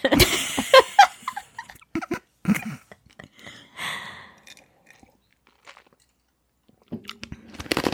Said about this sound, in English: Sorry, I'm crunching on ice cubes.